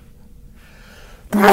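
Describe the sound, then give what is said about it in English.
A single loud sneeze bursts out suddenly after a brief quiet pause and a faint intake of breath, with no one talking. “Bless you. Oh, excuse me.”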